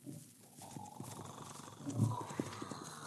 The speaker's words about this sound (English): A dummy is rigged on the back of a horse to look like the legendary Headless Horseman. Frank whips up the horse and sends it toward the cabin where Cisco is asleep.